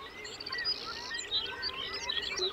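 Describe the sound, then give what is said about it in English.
A dense chorus of many birds calling and chirping at once, overlapping high trills and whistles filling the air continuously, with no voices; millions of birds arriving in early June on the Arctic coastal plain in Alaska. “In early June, millions of birds arrive on the Arctic coastal plain in Alaska from all over the world.”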